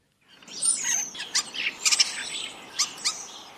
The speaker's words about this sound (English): But onto a different bird now, and that's the starling. Now, these always used to be regarded as a little bit of a sort of a scruffy looking bird. Let's just hear their song for those who might not be so familiar.